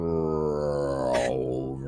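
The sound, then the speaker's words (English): A voice imitates the buzzing drone of flies and insects swarming and lifting someone off the ground, with a steady, low, rich hum held for about two seconds. A brief breathy hiss cuts in midway before the drone fades slightly. “This like buzzing, droning sound.”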